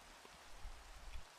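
A steady wash of rain falling, soft and continuous, with faint scattered drops and a low rumble underneath, no voices present.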